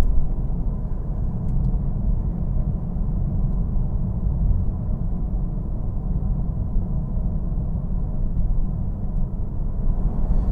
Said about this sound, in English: Sorry, I was a little distracted. Got a little distracted there by some traffic here, going through the little town.